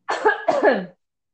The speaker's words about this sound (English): I'm sorry, I need to cough for a second.